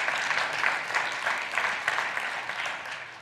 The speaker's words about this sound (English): Can we give Jesus a hand clap of praise?